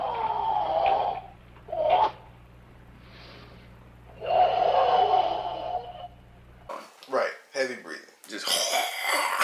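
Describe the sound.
A voice imitates heavy, raspy breathing and throat hocking, as if about to spit: several harsh, guttural bursts, followed by a few seconds of talking.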